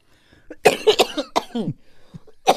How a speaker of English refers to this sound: I'm only coughing because I had that cold that's not completely gone.